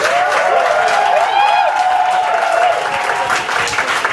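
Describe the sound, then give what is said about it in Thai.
A crowd applauds steadily for about four seconds, a dense, even wash of many hands clapping, with a few voices and a whistle-like cheer rising over it. “ไม่มีคนปรบมือให้เลย”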